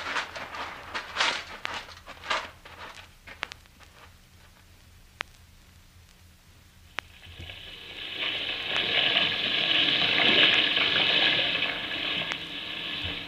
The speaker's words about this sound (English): Let me turn this washing machine off, will you? So old you can't hear nothing when it's gone.